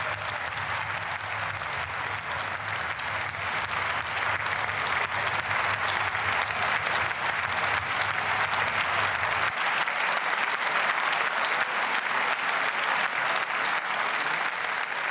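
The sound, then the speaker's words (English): Sustained applause from a large standing German audience after an announcement that Germany will invest more than 2% of its GDP in defense. A dense, steady roar of clapping that never lets up. A low hum beneath it drops away partway through, and no one speaks. “Now that applause just keeps going and going, and they're standing up.”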